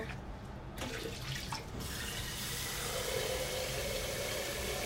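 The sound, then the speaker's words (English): A tap gushes steadily, water splashing into a basin with a broad, hissing rush that starts a little thinner and fills out to a constant flow. “All right, so I gotta get some water.”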